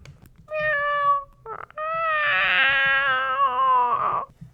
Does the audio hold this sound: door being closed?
no